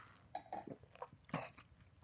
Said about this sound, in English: And, you know, this has a little bit of funk and herbs and spices and those kind of things, which means I should take a sip.